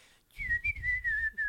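A person whistles a short tune, a clear, steady tone with small pitch shifts and brief breaks between notes, over a low background rumble, with no talking.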